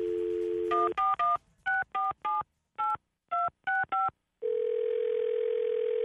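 A steady telephone dial tone gives way to about ten quick touch-tone beeps dialed in an uneven rhythm as a call is placed to a dry cleaners in Brooklyn, then a continuous steady tone resumes and holds to the end. No voices.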